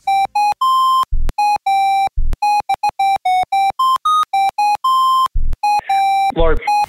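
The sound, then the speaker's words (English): A phone ringtone plays a rap song as a loud, bright electronic melody of rapid staccato beeps, punctuated by a few deep bass thumps and a brief vocal-like snippet near the end. “Do we have another ringtone we can play?”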